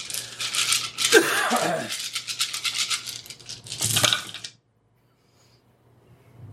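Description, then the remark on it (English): A large handful of dice rattles loudly and continuously for about four seconds, clattering in a dense, busy stream, then stops abruptly, leaving near silence. “That's a lot of dice.”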